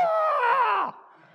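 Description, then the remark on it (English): A voice lets out a loud, drawn-out Braveheart-style battle cry lasting under a second, imitating David screaming after cutting off Goliath's head, its pitch dipping at the end before falling quiet. “No doubt raises it high in the air so the whole army can see it, and he screams like Braveheart.”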